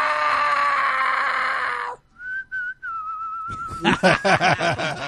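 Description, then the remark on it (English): A person mimics a bird as a dinosaur impression: a harsh, raspy screech, then a few steady whistled notes, ending in a quick series of rising, chirping trills. No speech, just the imitated calls. “Well, since dinosaurs are birds, I could do a bird voice, right?”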